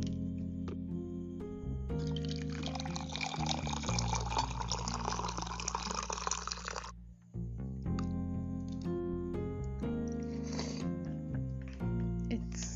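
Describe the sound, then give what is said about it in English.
Ginger tea pours into a cup in one steady stream lasting about five seconds, then stops. Soft sustained tones continue in the background before and after the pour. “So, get yourself a cup of tea because I have my tea here with me and I'm going to pour it right now.”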